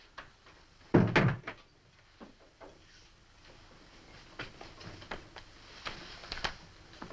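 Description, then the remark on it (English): An office door thuds shut with a solid knock, followed by a few lighter clicks and faint handling noises in otherwise quiet surroundings. “And shut the door, please.”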